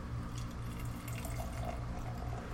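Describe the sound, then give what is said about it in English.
Wasatch apricot beer is poured steadily into a glass, a continuous gurgling stream of liquid that runs without pause for a couple of seconds, with no talking over it. “And the pour.”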